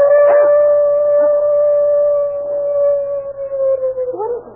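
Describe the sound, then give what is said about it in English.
A dog out on a back porch howls in one long, steady, sustained note that wavers slightly and breaks off near the end into shorter yelps. It is fairly loud, with no talking. “His dog. He's howling about something.”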